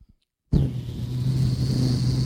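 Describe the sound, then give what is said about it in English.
After a short silence, a car's engine noise cuts in abruptly and holds loud, a steady rumbling hum with a faint high whine, as if accelerating past. “There goes the guy drive right by you.”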